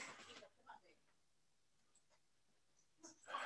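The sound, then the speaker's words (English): A dog named Tito barks outside the window in two loud, sharp bursts, one at the very start and another at the end, with faint scattered sounds in the quieter stretch between. “You may be wondering who that is outside the window barking.”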